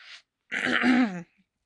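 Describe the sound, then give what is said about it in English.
A short intake of breath, then a single rough, voiced throat clearing from a tickly urge to cough, lasting under a second and fairly loud, with nothing else around it. “I need to cough, and it's like a tickle.”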